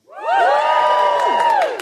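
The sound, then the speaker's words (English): An audience cheers loudly for a couple of seconds on Valentine's Day, answering a call to cheer if they are in love, many voices shouting and whooping together in one sustained burst that swells quickly and tails off at the end. “Okay, give us a cheer if you are, and I don't really know how to put this, in love.”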